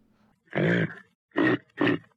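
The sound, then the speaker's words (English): Three deep, guttural deer-like grunts from a human voice: one long, drawn-out grunt followed by two shorter, punchy ones in quick succession, loud, with no other talking. “we're talking to a deer here.”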